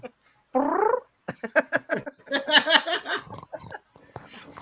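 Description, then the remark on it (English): A voice imitates a cat, starting with a drawn-out meow and breaking into a rapid, throaty, warbling yowl with a few shorter mewing bursts, loud with no other talking. “That darn cat.”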